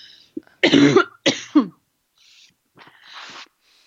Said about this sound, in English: And hold on, I'm going to cough.